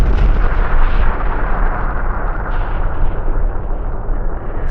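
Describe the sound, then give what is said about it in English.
A huge explosion roars as a giant creature's body evaporates in a white wall of light and heat, a dense, rumbling blast of deep booming noise that stays loud and sustained for several seconds, with no voices present. “And there's an explosion.”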